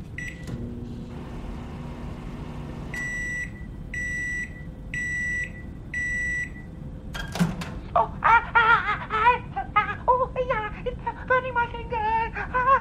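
A microwave oven warming a panini hums steadily, then gives four evenly spaced electronic beeps, followed by a sharp door click. Voices start talking and laughing right after.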